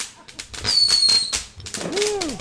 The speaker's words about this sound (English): There's some fireworks going off.